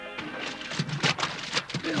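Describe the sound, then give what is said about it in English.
Splashing into river water as Wild Bill Hickok and Jingles dive into the muddy Rio Grande River during an ambush at the border: a rushing, churning wash of water with several sharper splash bursts in quick succession, fairly loud, with a faint voice briefly underneath at the start. “Caught in an ambush as they tried to cross the border, Wild Bill Hickok and Jingles dive into the muddy waters of the Rio Grande River, and a hail of bullets comes from the trees along the shore.”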